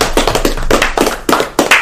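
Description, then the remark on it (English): A short burst of hand clapping from a few people, quick overlapping claps in an uneven rhythm, fairly loud and sharp, with no talking over it. “Let's clap it up for them real quick.”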